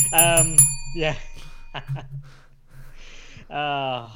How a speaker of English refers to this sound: Just play it five times and you've summed it up. It's summed up. Very true. Get the bell five times and it's done.